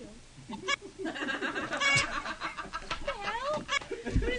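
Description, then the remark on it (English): A person vocally imitates a chicken laying an egg, clucking in choppy, squawking bursts and rising warbles, fairly loud, mixed with snickering laughter. “It's the sound of a chicken laying an egg.”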